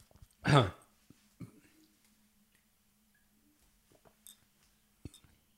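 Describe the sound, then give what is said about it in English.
One loud, harsh cough bursts out, followed over several seconds by a few quieter, scattered coughs and throat-clearing sounds, as from someone choking on water that went down the wrong way. “I just swallowed that water down the wrong pipe.”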